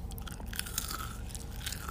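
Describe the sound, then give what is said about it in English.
Crunching of a crispy, evenly cooked waffle fry being chewed, with repeated crisp, crackling bites in a steady rhythm and no talking. “And so, I mean, as you can hear, they are crunchy fries.”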